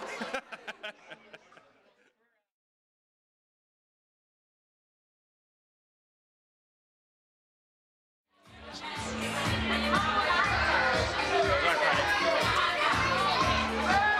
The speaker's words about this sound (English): The shrill screams of children are picking up in the background.